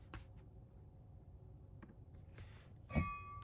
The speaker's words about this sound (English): And we're back, everybody, as you hear the clang of my water bottle here on the Locked On Padres podcast.